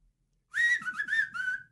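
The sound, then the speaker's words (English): On the Rick and Bubba radio show, a person whistles the opening of the shave-and-a-haircut tune: five quick, clear notes, the first held longer, fairly loud with no talking. “Like to have …, Whistle, shaving a haircut.”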